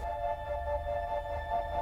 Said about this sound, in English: You hear this crackling out through the audio recordings, through the static, in a very afraid, hushed voice.